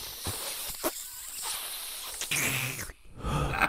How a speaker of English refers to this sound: That was an extended sniff right there.